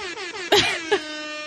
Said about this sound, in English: Air horn.